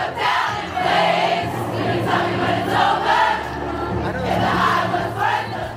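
A huge crowd of fans who didn't get concert tickets sings along outside a stadium in a loud, sustained, swelling chorus, many voices blending into a continuous roar with rising and falling melodic phrases.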